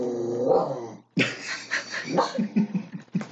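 A small Jack Russell terrier growls steadily for about a second, then breaks into a rapid run of sharp barks and snarls, loud and agitated, with no one talking.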